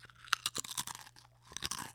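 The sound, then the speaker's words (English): Someone bites and chews a crunchy Cool Ranch Doritos tortilla chip, producing a quick series of sharp, crisp crunches in an uneven rhythm, with a brief lull midway and no talking. “I smell the fake chemical Cool Ranch flavoring that they spray onto the tortilla chips at the Doritos factory. I don't know. Should I eat one?”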